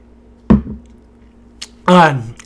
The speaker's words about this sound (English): Excuse me, I'm going to drink a little more water.